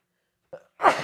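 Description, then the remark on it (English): A single sneeze: a short inhaled catch followed by a sharp, loud burst of breathy noise, with no talking around it. “Bless you.”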